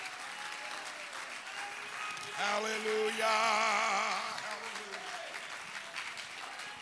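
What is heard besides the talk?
audience clapping hands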